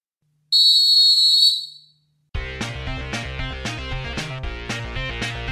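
A single loud, shrill whistle blast holds steady for about a second and then fades, followed by a pause before upbeat music with a steady beat starts up.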